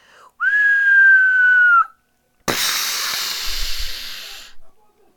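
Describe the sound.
A voice imitates a falling missile: a clear, steady whistle drifting slightly downward for about a second and a half, then a pause and a long, loud hissing burst with a low rumble, like an explosion.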